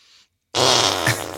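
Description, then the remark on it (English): A short, faint hiss, a brief silence, then a loud, buzzy raspberry-like fart noise lasting almost a second, clearly made by someone imitating it with their mouth or hands. “Did you guys learn how to make the fart noises where you go like this?”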